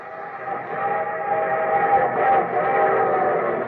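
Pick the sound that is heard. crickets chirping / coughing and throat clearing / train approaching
train approaching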